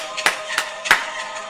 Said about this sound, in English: It sounded like people clapping. She was tap dancing.